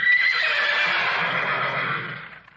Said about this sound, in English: And in that in the cartoon, when they ever say her name, you hear the horses in the background whinny, just like whenever you say Frau Blücher in Young Frankenstein.